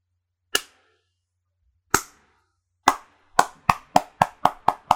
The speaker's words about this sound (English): Just clapping.